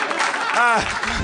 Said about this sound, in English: Thank you. You should applaud. Thank you.